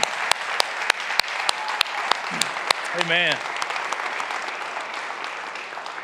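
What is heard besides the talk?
audience clapping hands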